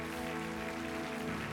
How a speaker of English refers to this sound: Give these people a great big clap offering.